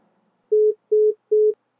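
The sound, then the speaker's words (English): An Android-powered cell phone's call-ending tone as the end call button is pressed: three short, identical electronic beeps at an even pace, steady and mid-pitched, ringing out clearly with silence before and after. “Naomi Matthews gently pressed the end call button on her Android-powered cell phone and cradled the mini supercomputer under her chin for several long moments.”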